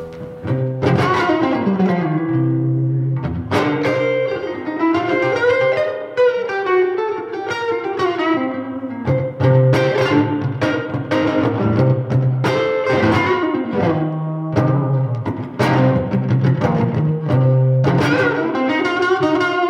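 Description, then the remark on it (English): An electric guitar with a floating bridge, in standard tuning, plays a loose, bluesy tune in a Lightning Hopkins style with ringing single notes, bends and strummed chords, steady and fairly loud for about twenty seconds with no voices. “So I'll use this for some bluesy tunes and different bits and pieces.”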